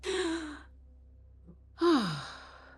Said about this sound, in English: There's that gasp.